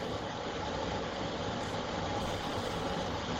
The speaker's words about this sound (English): Is the blender currently going on? How distracting is that noise?